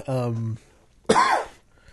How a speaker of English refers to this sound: There's high carbonation level. That's what made me cough right there. It tickled the back of my throat.